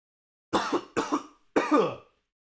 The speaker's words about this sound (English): Excuse me. Hold on. I got a cough again. Jesus Christ, what's going on?